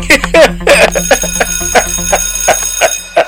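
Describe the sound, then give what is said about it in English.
A bell rings rapidly and continuously, a bright metallic clatter of repeated strikes with sustained ringing tones, loud, lasting a few seconds. “That's the right sound. That's the bell sound.”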